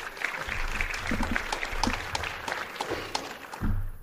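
An audience applauds as the volunteer coordinator of Kingdom House comes up to make a presentation, many overlapping claps forming a dense, steady crackle at moderate loudness that holds for about four seconds, with a low thump near the end.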